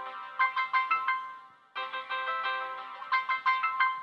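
An old T-Mobile phone ringtone plays clearly on its own: a bright, synthetic melody of quick repeated notes in two bursts separated by a short pause, with no voices.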